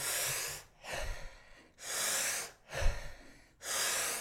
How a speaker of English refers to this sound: the Wim Hof breathing method, if you don't know it, is it's almost like hyperventilation. So you do 30 or 40 deep breaths like